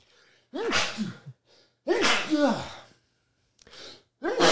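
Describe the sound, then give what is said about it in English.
A man sneezes twice, loud and forceful, each a sharp explosive blast with a breathy tail, followed by a shorter gasping burst and the start of another at the end. “He's got some violent sneezes.”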